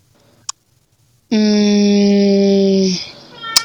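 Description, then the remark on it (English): A cat named Peanut lets out one long, loud, drawn-out meow of nearly two seconds at a steady pitch, with a sharp click just before it and another just after. “Sorry, that's Peanut, y'all.”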